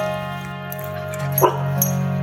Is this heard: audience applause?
no